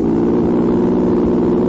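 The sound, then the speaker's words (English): A car engine hums loudly, a steady droning growl with no voices, as the motor runs under power and accelerates. “And here's something else that makes good listening when you're on the go in your car.”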